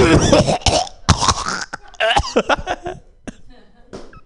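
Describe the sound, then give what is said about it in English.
A person coughs up phlegm and clears their throat repeatedly, a string of harsh bursts in the first two and a half seconds, then a few quieter hacks trailing off. “Well, I have a clearer throat now because I just coughed up some real lovely stuff.”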